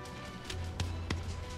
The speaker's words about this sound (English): Okay. So today, I hear the door shut there.